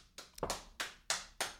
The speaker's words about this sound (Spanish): Voy a decirlo otra vez, a ver si aplauden con más entusiasmo.